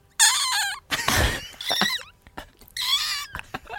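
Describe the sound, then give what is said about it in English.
A person imitates a seagull with loud, high, wavering squawks: two long warbling cries separated by a harsh, breathy burst, with short choppy yelps trailing off at the end. “It was not bad, but my favorite one out of all of the impressions that he's so good at, I think my favorite is when he does a seagull.”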